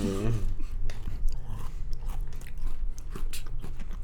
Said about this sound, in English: I don't fucking like the sound of you guys chewing. I was doing it too, but.